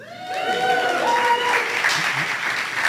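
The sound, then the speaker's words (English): A crowd claps steadily for about three seconds, a dense, even patter, with a few voices calling out over it. “Don't clap for it.”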